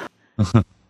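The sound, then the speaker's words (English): A loud sneeze: a quick sharp breath, then a two-part explosive burst lasting about a quarter second, followed by quiet. Nobody talks. “Gesundheit.”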